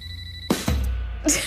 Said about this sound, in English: What's that? Was that my phone?